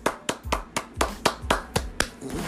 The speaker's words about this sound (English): First of all, let's just give it a big round of applause. Let's give it a big round of applause.